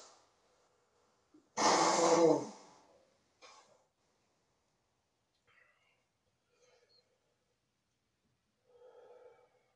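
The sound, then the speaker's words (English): A single loud nose blow lasting under a second, a harsh honking burst of air, followed by quiet sniffles and faint rustling against near silence. “Yeah, make it sound like blues when you blow your nose.”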